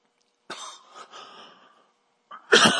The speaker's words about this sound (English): I swallowed wrong, folks. It's not COVID. I just swallowed wrong.